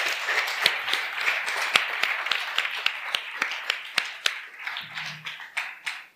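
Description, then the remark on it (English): A room full of people applauds, a dense wash of clapping with sharp individual claps standing out, sustained for several seconds and gradually thinning toward the end. “You guys can round of applause.”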